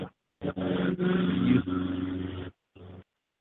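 Loud traffic noise with the engine rumble and whine of vehicles passing by, coming in choppy bursts over a muffled, narrow-sounding line, with brief gaps of silence.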